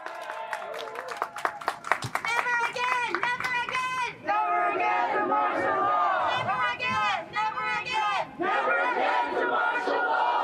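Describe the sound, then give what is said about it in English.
A crowd of mostly Filipino protesters gathered in front of the Philippine consulate on a windy, cold evening shouts in loud, overlapping voices, with rhythmic bursts of chanting and sharp claps cutting through the dense, continuous roar of many people yelling together. “The evening of Monday, May 9th was windy and cold, but it didn't stop outraged protesters, most of whom were Filipino, from gathering in front of the Philippine consulate to express their grief.”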